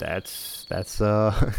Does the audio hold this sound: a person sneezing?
no